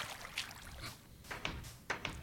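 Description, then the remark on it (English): Several quick wooden clacks from a video game fence gate swinging open and shut like a door, sharp and fairly loud, spaced irregularly over a couple of seconds with no talking. “And there then it goes, and then if you, just like any other door, right? Ah, very cool. Makes a lot of racket, too.”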